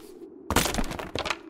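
A heavy chair crashes down and smashes a compass: a sudden loud crunching impact with crackling, splintering debris, then a second sharp crack before it settles. No voices.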